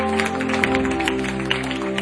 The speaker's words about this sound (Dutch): Come on, let's give Jesus a hand. Amen. Laten we Jezus een applaus geven.